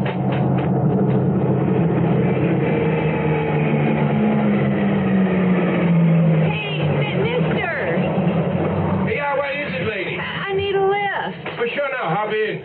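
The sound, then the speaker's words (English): A low pickup truck engine rumble grows and shifts in pitch as the truck draws near, steady for several seconds before voices start talking over a quieter background. “Okay, it's a pickup truck.”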